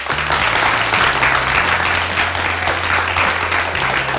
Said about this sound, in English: So can we have a big round of applause for Emma Reynolds?